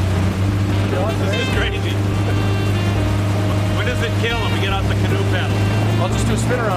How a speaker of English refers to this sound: I can tell you honestly, I've never been in a boat that's got something as big as a 115 horse on the back. So it was wild to feel that engine take off. The power. The unbelievable, unbridled power.